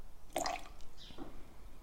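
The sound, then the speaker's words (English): A short splash of green chartreuse, about 10ml, pours into a small measure, a quick trickle and drip, followed by a faint clink and settling after about a second. “It's some green chartreuse. A really herby, distinctive smell to that. And it's a great colour. And just a splash, really. Just get 10ml.”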